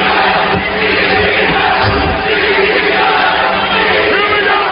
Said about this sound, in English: This is the match where the crowd is very audibly chanting ECW.